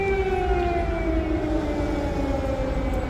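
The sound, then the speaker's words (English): A loud air raid siren wails steadily in Ukraine during the war, its tones sliding slowly downward over a constant low rumble, with no voices present. “Now again, they were in sirens.”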